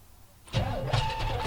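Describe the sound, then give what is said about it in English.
After a brief quiet moment, a fuel-injected small-block truck engine begins cranking loudly, with a steady churning whir that pulses in an uneven rhythm as the starter turns it over. “Will you start the truck already?”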